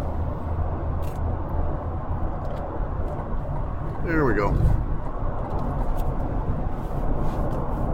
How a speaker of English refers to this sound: And hang on a second, I've got to do a bit of tricky driving, road hazards here. They're working on this state route, and I got to get over before this big large truck smushes me.